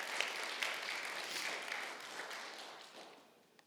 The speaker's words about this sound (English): And as they do, yeah, we can clap for them as well.